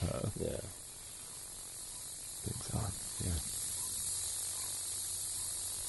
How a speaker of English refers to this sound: I mean, a lot of it is very just what you may hear if your whole body was in there. Some of it is interference or you know some voltage.